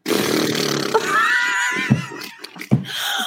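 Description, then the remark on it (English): A voice imitates a vaginal fart with a long, loud, raspy sputter that wavers in pitch, then trails off into a couple of short breathy pops. “And also like a vagina fart. It's so like, it's such a less tight hole. Yeah. It's like a.”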